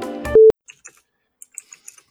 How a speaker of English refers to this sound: No, I just keep typing, backing, backspacing, and retyping, backspacing, but my font keeps getting bigger.